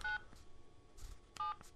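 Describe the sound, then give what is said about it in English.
Two short, crisp telephone keypad tones, dual-pitched beeps spaced about a second apart, with faint clicks of button presses in between, as someone dials a telephone to call a committee chairman. No one speaks. “I guess I could use the telephone. I need to get Committee Chairman Priebus on the phone.”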